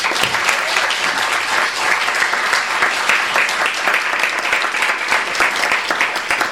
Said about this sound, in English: Let's please give a warm round of applause to Ben Ehrenreich.